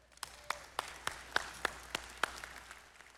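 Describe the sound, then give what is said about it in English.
Audience applause at a church service, at a moderate level: a steady wash of clapping with several sharp, evenly spaced claps standing out, lasting a few seconds with no voices. “All right, you can give that a round of applause.”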